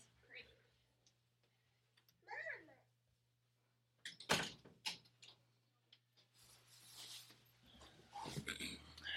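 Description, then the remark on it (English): A door shuts with a single loud thump midway through, surrounded by scattered clicks, shuffling and faint vocal sounds. “So, it usually locked the door, and I didn't that time.”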